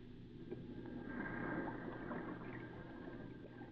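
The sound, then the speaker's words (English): A longboat from a ship at anchor being rowed toward an island beach, with a steady wash of sloshing and breezy noise and a low hum underneath, without distinct oar strokes standing out. “So when a long boat started out, we raced along the beach and waited, hiding in the tangled thicket.”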